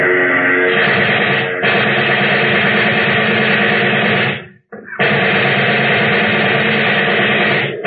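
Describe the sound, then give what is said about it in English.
Long, loud bursts of rapid submachine gun fire, aimed at the propeller of a plane that is taking off and heading straight for the shooters, blend with the droning aircraft engine into a dense, harsh roar. The firing is broken once by a brief pause before it resumes. No one speaks. “Get out the submachine gun.”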